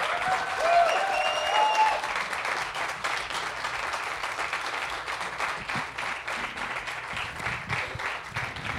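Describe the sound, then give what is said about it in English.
A festival crowd claps and applauds a guest at a recorded live event, steadily for several seconds, a dense, even patter of many hands, with a few faint whistles and cheers rising above it early on. “A huge, please, round of applause for Jen.”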